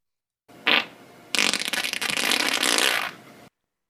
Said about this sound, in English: Fart or not? I'm gonna say yes. That's a human fart. That is correct. Yes, it is.